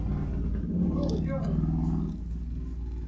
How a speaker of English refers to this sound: It was a motorcycle.